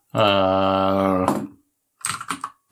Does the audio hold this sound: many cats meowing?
no